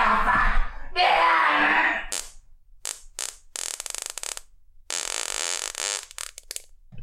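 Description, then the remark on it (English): A person blows a long, loud raspberry that imitates a fart, sputtering and buzzing in bursts with brief breaks, with no talking over it. “Then, but like apart from that, yeah, it's literally just noises or farts.”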